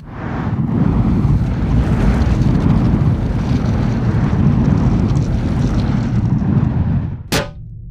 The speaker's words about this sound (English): What was that? Should we do evasive maneuvers? Just a little mild interstellar turbulence.